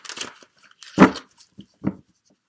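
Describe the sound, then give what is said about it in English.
A deck of tarot cards being shuffled for a reading: a few crisp, papery riffling bursts with short pauses between them, and no voices. “I have already shuffled all the decks. Let me just shuffle a bit more and tune into the energy for the Aquarius people.”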